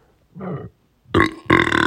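A loud burp after drinking carbonated water: a short low rumble first, then two long, strained belches in quick succession, with no talking.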